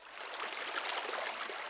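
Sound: flowing river water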